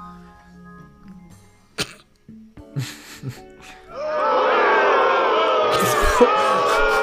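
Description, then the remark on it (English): A few scattered coughs and throat noises, then a loud crowd erupts into sustained booing, a dense wall of jeering voices that holds steady to the end. “We're just booing now.”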